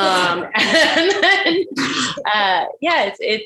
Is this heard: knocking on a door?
no